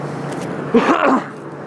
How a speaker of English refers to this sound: Okay, right next to the freeway, that's the background noise.